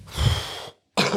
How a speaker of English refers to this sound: Bro just coughed with like 7 kilograms of phlegm in the back of his throat.